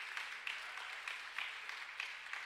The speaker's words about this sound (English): Now, can I have a round of applause for one member of our youth,